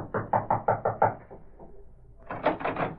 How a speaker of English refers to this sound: Then, after waiting a few moments longer, he approached and rapped on the door.